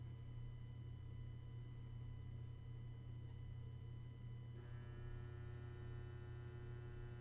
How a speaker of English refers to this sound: There goes my fridge again.